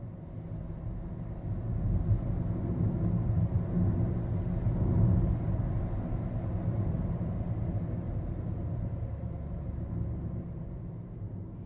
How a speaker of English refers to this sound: Like, it's really dark, and all you can see and hear are other cars.